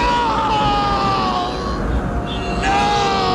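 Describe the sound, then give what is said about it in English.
Luke screams in agony after Vader tells him he is his father, a long, anguished scream, his strained voice wavering and sliding down in pitch before rising again, loud over a rumbling, noisy background. “Luke screams out in agony.”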